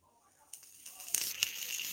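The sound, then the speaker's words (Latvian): A vape coil sizzles and bubbles, a steady hissing crackle with a few sharper pops standing out, starting faintly and then holding at a fairly loud level to the end. “Bet nu viņš tur ritīgi vārās un burbuļo.”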